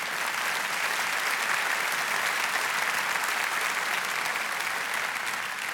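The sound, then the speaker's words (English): An audience at Scottsdale Bible applauds steadily for several seconds during a sermon, a dense, even patter of many hands clapping at once with no voices standing out. “You can clap at that.”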